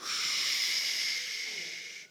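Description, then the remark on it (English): Children blow and hiss together in a sustained, breathy whoosh imitating a huge wind, with some spitting sounds mixed in; the noise stays steady and fairly loud for about two seconds. “Kids, I want you to make your best sound of a huge wind.”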